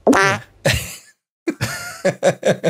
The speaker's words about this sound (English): It's the most trumpeted fart I did. Tell me where you were when you farted that fart. I was on my couch. Yes. And I was watching TV.